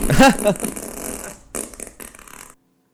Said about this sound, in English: Now let's see what the long fart's like.